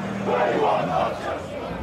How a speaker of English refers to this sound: There's gathering in numbers here in West London, as you can see. Chelsea fans are blocking traffic outside their home stadium, protesting against the formation of a new European Super League.